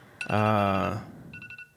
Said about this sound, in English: That's a little buzzer thing going off again. I don't know what's wrong with it. It's just doing stuff.